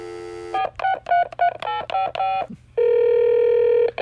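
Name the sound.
telephone dialing tones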